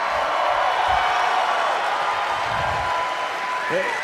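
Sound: audience applause and cheering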